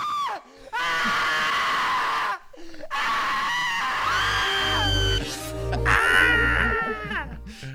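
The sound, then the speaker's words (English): Several people scream loudly in sustained, overlapping bursts with short gaps, joined later by low rumbling tones underneath, the shrieks wavering and rising in pitch. “Will probably be screaming too. And remember this, a scream at the right time may save your life.”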